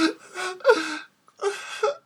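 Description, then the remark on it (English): A child cries about 2 meters away in the darkness in two sobbing, wavering bursts separated by a brief silent pause, the voice high and strained with gasping breaths between wails. “you do hear a child crying about 2 meters away from you in the darkness.”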